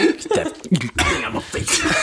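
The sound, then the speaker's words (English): A person coughs several times in quick succession, harsh and raspy bursts, fairly loud, with no talking in between. “let me come cough on you some more.”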